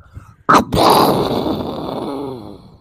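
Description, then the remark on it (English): A person imitates an explosion with their voice, made as the sound cue for the 'quick pop, quick minute' segment: a sharp plosive burst followed by a long, rough, rumbling exhale that slowly fades out over about two seconds. “I'm gonna shut up, do the explosion thing, and Ace is going to clip out your explosion thing, and I want that to be the official quick pop, quick minute sound cue.”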